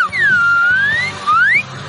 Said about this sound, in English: And one I have blows a slide whistle. And one strokes. Yeah, I have a slide whistle.